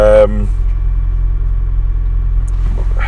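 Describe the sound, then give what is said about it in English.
A steady, deep engine rumble fills the inside of a stationary car in Hull, waiting to leave after a football cup match, constant throughout, with a brief voice heard right at the start. “Newcastle have just gone out the cup at Hull, and we're sat in Hull in the car waiting to leave.”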